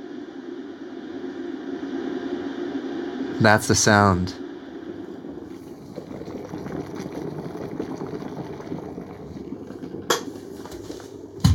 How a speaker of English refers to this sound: Let's get our water hot. Okay. Oh my God, listen to it go.